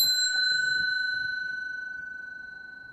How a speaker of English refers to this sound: I'm getting the bell back out, and I'm going to ring the bell, and I'm going to end this off.